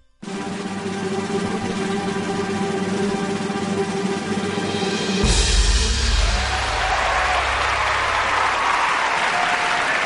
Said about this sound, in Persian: این دست و جیغ هورا مال ریگ لیگ رادیویی بود